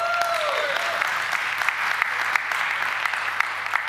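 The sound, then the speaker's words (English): An audience breaks into steady, dense applause, a continuous wash of many hands clapping at an even loudness with a few sharper claps and a brief whistle-like tone early on, with no talking. “You can all applaud at that point.”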